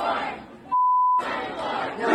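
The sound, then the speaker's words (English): A loud, agitated mob outside a door at a TPUSA event shouts and screams continuously while people, including police, try to keep the doors closed; the roar is briefly cut by a steady half-second censor bleep before the yelling resumes just as intensely. “Pulling, people trying to keep the door closed because this screaming mob outside.”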